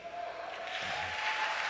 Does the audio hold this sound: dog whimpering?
no